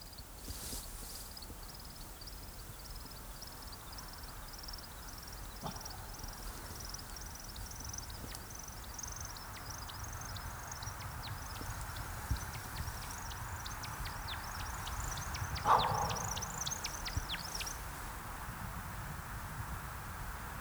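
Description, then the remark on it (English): A woodcock's display flight: a long, steady run of high twittering made by air over specialized wing feathers, building into a burst of sputtering, liquid chirps as the bird descends, banking and zigzagging, before falling silent. A low outdoor rumble lies beneath. “And as they descend back to Earth, banking and zigzagging in crazy patterns, they add in a sputtering chirp, like the sound of a teensy World War I biplane spiraling to its doom.”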